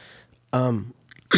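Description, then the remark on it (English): A single sneeze: a strained, voiced intake that slides downward in pitch, a short pause, then a sharp, hissy burst of breath at the end. Nobody speaks. “Bless you.”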